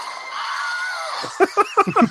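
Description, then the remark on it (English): A Wilhelm scream stock sound effect: one loud, sustained, strained male cry lasting about a second, followed by a string of short, choppy vocal bursts. “Yes, that's the Wilhelm scream.”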